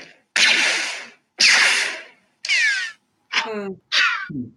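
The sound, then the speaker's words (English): Five loud, twangy metallic zaps from a hammer striking a taut antenna tower guy wire, each a bright burst with a descending ringing sweep. The first two are long and hissy, the last three shorter. “A hammer on an antenna tower guide wire.”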